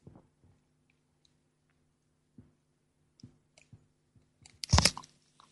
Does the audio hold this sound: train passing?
no